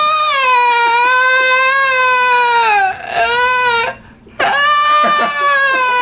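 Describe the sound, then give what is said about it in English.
A person imitates their distressed cat crying after being scolded: loud, drawn-out, wavering wails that bend in pitch, a long first cry, a short gasp-like break, then another sustained howl. “Wait, like she's like, "You're a bad cat," and he's like, he just freaked out, like started breathing heavily, laid down against the couch, uh-huh.”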